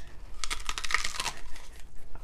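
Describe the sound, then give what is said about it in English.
Someone crunching on a raw leek: a quick run of crisp, crackly snaps and chews over about two seconds, fairly loud, with no talking. “And I am actually eating the leek.”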